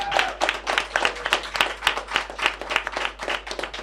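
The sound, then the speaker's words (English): A crowd at a live show claps steadily for several seconds in another round of applause for Eddie Johnson, many hands producing a dense, rhythmic patter of fairly loud applause with no voices standing out. “Can we just have another round of applause for Eddie Johnson?”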